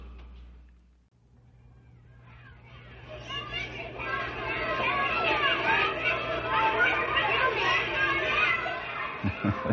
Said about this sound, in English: The shouting and laughter of children coming home from school is most enjoyable, even though mother and dad pay taxes to hire teachers to pour education into the play-filled heads.